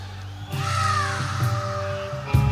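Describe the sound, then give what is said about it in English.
A harsh, drawn-out crow-like caw rings out for about two seconds over a low rumbling backdrop, as if from a played recording, ending with a short louder burst. “That still gives me the creeps, even when I hear that now. It's like a crow.”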